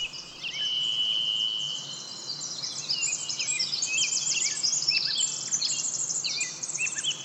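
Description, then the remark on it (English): A songbird sings a rapid, continuous stream of bright, ornamented notes and trills, heard clear over a soft, steady background hiss. “Birds are quick-fingered jewelers of air, crafting dozens of ornamented gems every second. In their modulations of pitch, amplitude, and timbre, we hear the vitality of their blood, muscle, and nerve.”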